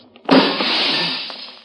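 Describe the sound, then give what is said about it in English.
A single loud smash of a ground-level living room window's glass breaking, with a sharp impact followed by a bright, crackling spray of shards that lingers and fades over about a second. No voices. “Now, most of the glass is out of the way.”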